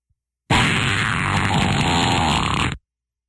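A loud, drawn-out fart sound effect: one continuous raspy, buzzing blast lasting a little over two seconds, steady before cutting off abruptly, with no talking.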